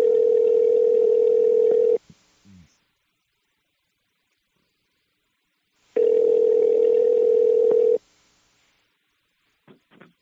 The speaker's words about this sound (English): I will dial Wendell's number and put you on my phone with him